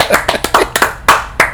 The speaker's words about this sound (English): Can we clap it up? Yes, we can clap it up.